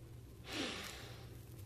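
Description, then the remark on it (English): A single breathy sniff drawn in through the nose, a short hissing intake of air that swells and fades within about half a second, fairly quiet against low background hum. “Now put your nose right here. Now, sniff.”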